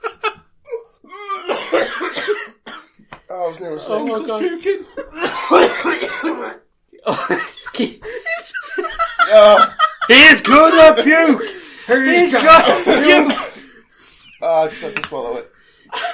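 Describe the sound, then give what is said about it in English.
Several loud, harsh coughs and throat clearing come in repeated bursts, mixed with voices and a bit of laughter in between. “If you keep coughing, John Cena back turn up.”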